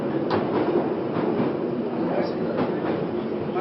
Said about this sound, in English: You probably can't hear anything that I'm saying because it's too loud with the train, but there we go.